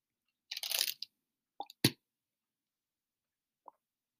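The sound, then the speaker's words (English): Someone sips iced tea from a bottle: a brief airy slurp, then a couple of wet plops and a gulp, followed by a faint click after a pause. No one speaks. “Now that you've all heard me take a sip of my lovely iced tea, we can...”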